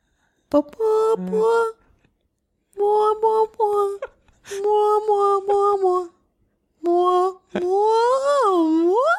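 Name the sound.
voice imitating whale noises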